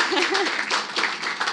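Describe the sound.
A round of applause from a crowd, a dense, steady crackle of many hands clapping at once, with a few voices calling out briefly near the start.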